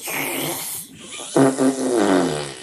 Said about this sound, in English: Oh, my God. What? It just... It did a gigantic fart. Don't be ridiculous. I swear it did.